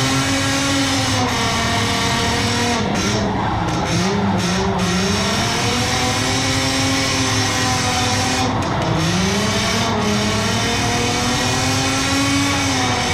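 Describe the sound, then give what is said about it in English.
A drift car's engine roars loudly and continuously, its pitch rising and falling through repeated revs and shifts as it drifts around an oval track, with no voices present. “How many times has he driven the oval? It seems like the car though, like wants to spin on him.”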